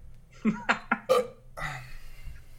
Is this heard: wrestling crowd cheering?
no